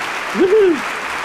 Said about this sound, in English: Oh, they're clapping.